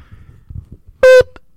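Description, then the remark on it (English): A single short, loud blast from an old fire alarm going off in a nightclub at about half past nine in the morning, a harsh buzzing tone rich in overtones lasting a fraction of a second, then a faint brief blip, over low background rumble. “It was like an old alarm had gone off in this nightclub, and it was like a glimpse.”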